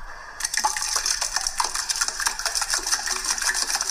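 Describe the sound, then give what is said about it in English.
A man's hands pat and squelch all around a balloon he has filled with water, sitting in his sink, a quick, irregular run of wet slaps and soft splashy taps continuing steadily for several seconds with no talking. “He has blown up, or he's filled a balloon with water, and it's in his sink, and he's just patting it all around with his hands.”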